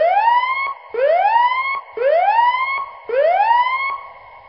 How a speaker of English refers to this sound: My gosh, we're going to be setting off the alarm a lot, I think.